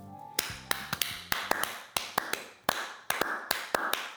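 Soft, scattered hand claps, roughly a dozen crisp slaps at an uneven pace, quiet and polite like a golf clap, with no talking over them.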